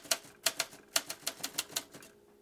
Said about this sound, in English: Again with the typewriter? Always with the typewriter.